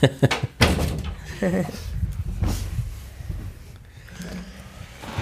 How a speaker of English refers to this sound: So could you could you close that door?